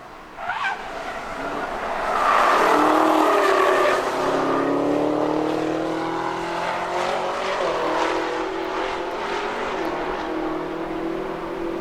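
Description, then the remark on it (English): A loud camouflaged Gen 6 Camaro test car's engine revs hard as it races past on the Nürburgring, its pitch climbing and shifting through gears with some tire squeal, the roar sustained for several seconds before easing slightly. “This week, a video and pictures pop up of this camo Gen 6 car. Super mega Camaro. Screaming around the ring.”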